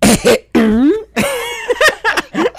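Several loud, close, exaggerated coughs in quick succession, strongly voiced and drawn out, as if a person is theatrically performing a cough rather than coughing naturally.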